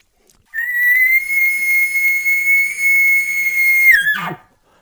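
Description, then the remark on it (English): A single long elk location bugle: a clear, high whistling tone that rises briefly, holds steady and loud for over three seconds, then breaks and drops into a short raspy growl at the end. “Most of the time, this is my location bugle, especially if I'm not getting any response close.”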